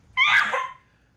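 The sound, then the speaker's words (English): A single loud sneeze bursts out suddenly, with a sharp voiced blast that fades within about half a second, followed by quiet. “That was one hell of a sneeze.”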